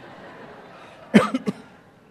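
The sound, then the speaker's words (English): A person in an audience coughs once sharply, then twice more in quick, softer bursts, against a low hum. “There's a sympathy cough over here.”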